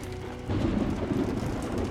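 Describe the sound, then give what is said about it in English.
Steady rain hisses loudly while deep thunder rumbles in, swelling about halfway through into a heavy, sustained roar of a storm. “When the rain started, the nuns were already afraid the children might not survive the storm.”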